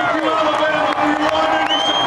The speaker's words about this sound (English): Speaking of football over the weekend, we've got to show this just horrific welcome for the president in Alabama. Just shockingly brutal. There it is. It's man, the booing. And listen to that. Listen to the booing in there.